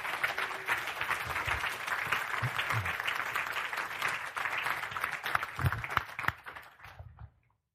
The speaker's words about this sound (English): let's give them a round of applause as they come and share.